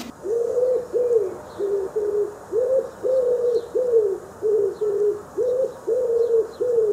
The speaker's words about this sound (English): This week's Tweet of the Week is wood pigeon.